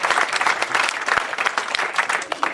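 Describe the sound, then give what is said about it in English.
A crowd applauds steadily as guest Matt Besser is welcomed, a dense, even patter of many hands clapping at full strength without pause for the whole stretch, with no voices rising above it. “Yeah, you gotta keep the applause going.”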